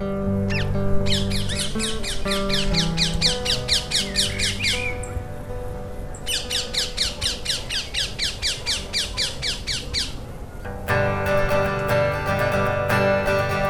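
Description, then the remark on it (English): Rapid, harsh squawks of London parakeets repeat in dense bursts, loud, with a short pause midway before the chattering calls resume over a low background rumble. “You can listen to more of his work and find out more about the London parakeets at our website,”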